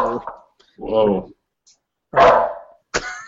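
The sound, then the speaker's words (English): A dog barks four times in short, separated bursts, fairly loud, with brief silences between each bark. “Ooh, I'm dog. Is that an intruder?”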